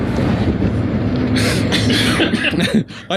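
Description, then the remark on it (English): A person's short run of raspy stress coughs breaks out over a steady low rumble, several quick bursts clustered together before trailing off near the end. “I get stress coughs.”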